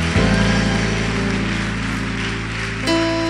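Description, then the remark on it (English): An audience claps for the Lord steadily in a dense, continuous wash, mixed with sustained keyboard or organ chords that shift to a new chord near the end. “Clap for the Lord.”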